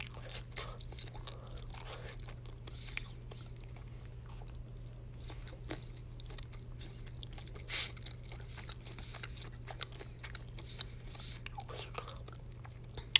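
Chewing of flour-coated chicken strips, with soft irregular bites and moist crunches repeating over a steady low hum; no one speaks.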